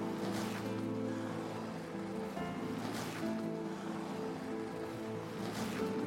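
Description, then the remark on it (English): Wind howls steadily with low droning tones, swelling into stronger whooshing gusts every few seconds, loud and continuous with no voices, as snow falls heavier and a blizzard descends. “However, things are getting a bit windy.”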